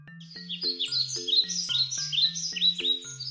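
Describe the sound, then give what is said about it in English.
Birds chirp and twitter busily and continuously, bright high calls overlapping one another, over a steady, low, rhythmic pulsing tone underneath. “Birds, they chirp.”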